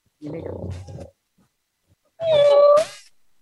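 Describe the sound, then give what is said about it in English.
A cat makes a short, low rumbling sound, then after a brief pause lets out one loud, drawn-out meow very close to the microphone. “When the cat comes back, I'll get the cat to meow in the microphone.”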